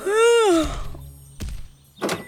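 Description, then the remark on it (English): A tonal, creaky sweep opens, then two separate dull knocks land on a wooden door about half a second apart, moderately loud with quiet between them; someone knocking on Sabretooth's door just after dawn. “It was just after dawn, and there was already someone knocking on Sabretooth's door.”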